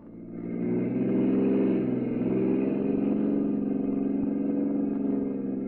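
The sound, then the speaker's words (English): Jordan's car engine starts up and revs, its low rumbling drone swelling quickly and then holding steady as the vehicle pulls away, loud, with no voices. “When we got outside, Jordan took out the gun he'd been carrying and made me get into his car.”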